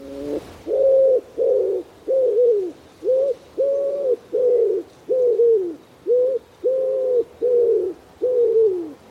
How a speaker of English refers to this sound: I mean, if I was to do that here, if I was to copy the sounds around me, it'd be the wood pigeon, wouldn't it?